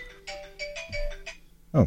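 A phone ringtone sounds in a quick series of bright electronic tonal bursts, moderately loud, before a voice briefly cuts in at the end.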